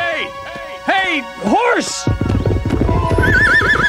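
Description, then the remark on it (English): A horse whinnies several times in loud, rising-and-falling bursts, then rapid hoofbeats of horses running across a field take over, a steady galloping clatter that continues to the end. “finds three horses running across a field.”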